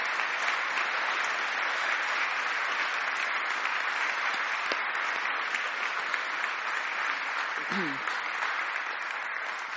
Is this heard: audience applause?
yes